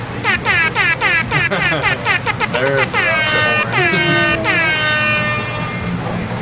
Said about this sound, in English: Don't pull up an air horn because I know that's what you've got. I only have 2 sound effects. Well, I've got the exact same air horn.